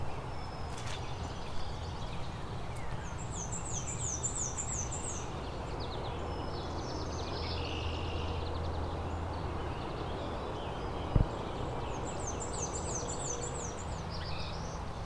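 A high, buzzy song of a black-throated blue warbler or northern parula rises twice, about eight seconds apart, each phrase a quick wavering trill, fairly faint over a steady hiss of wind or running water.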